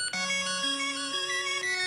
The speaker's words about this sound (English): Oh, you want to hear my ringtone? This is for... Do you know what this is?